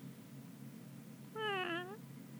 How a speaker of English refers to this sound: If there's a random cat, what was that? A cat walks by, gets stepped on by one of the Turtleborn guards.